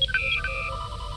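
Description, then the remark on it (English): A short electronic communicator hail, a hailing-frequencies chirp effect: layered high beeping tones that chirp and step in pitch, then settle into a steady warbling hum over a low rumble, lasting about a second with no voices. “So let's open hailing frequencies.”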